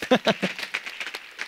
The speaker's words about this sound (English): Come on, somebody. Oh, that ought to get a better hand clap.